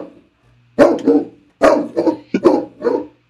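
A dog barks loudly in a quick series of sharp woofs, about five barks in two clusters, with a low hum running underneath and no talking.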